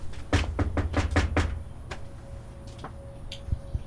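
A quick series of about six firm knocks on a front door, evenly spaced, followed by a few fainter, scattered taps and quiet background noise.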